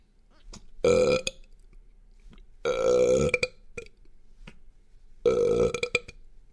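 Three loud, drawn-out burps rumble out one after another, each lasting about a second with short quiet gaps between them, forceful with no talking.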